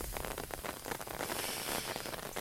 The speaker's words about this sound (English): I don't think this is going to be a passing shower either.